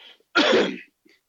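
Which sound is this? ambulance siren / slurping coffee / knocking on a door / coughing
coughing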